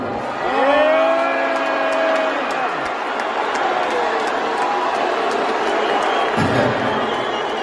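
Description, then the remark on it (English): A large audience erupts in a mix of booing and cheering as Elon Musk is introduced on stage at a comedy show, a dense roar of many voices with long drawn-out tones rising above it, sustained and loud for the whole stretch. “introduced Elon Musk to a mixture of boos and cheers”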